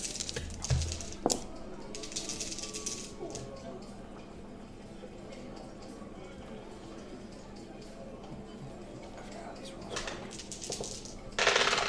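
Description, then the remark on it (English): Dice rattle and clatter across a hard table in several bursts of sharp clicks, with a louder tumble near the end and quiet voices murmuring in the background. “Roll the remainders.”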